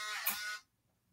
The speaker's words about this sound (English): Yeah, the door got unlocked and I was like, was that your astromech? Hang on just a second. I don't know what's going on.